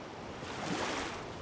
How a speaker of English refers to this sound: I had to quickly jump on and try to ride the wave that broke.